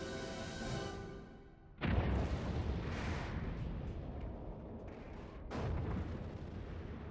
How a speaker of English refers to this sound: I like explosions. That's why. I just like explosions.